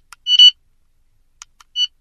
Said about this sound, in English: Note that a single beep tone is heard when the Record button is pushed and recording commences. When the Play button is pushed to complete the recording, a double beep tone is heard.